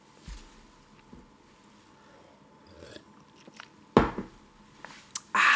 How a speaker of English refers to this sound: I just took a drink of water. Very unprofessional, on air.